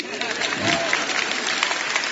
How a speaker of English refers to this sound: Now you can clap.